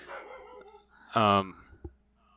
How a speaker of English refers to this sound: Oh, now the dog's barking right outside the room. That's real cool.